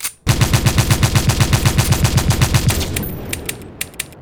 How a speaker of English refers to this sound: Lucas unloads the entire clip. Explosions punctuate the countryside as the muzzle flashes sporadically